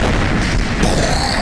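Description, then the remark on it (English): A loud, sustained meteor explosion blast roars, a dense rumbling boom filling the whole moment with a burst of rougher, crackling noise midway as windows shatter, knocking office workers to the ground. “Dizzying explosions shattering windows, knocking these office workers to the ground.”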